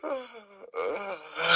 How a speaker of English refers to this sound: Great. Now people are yawning.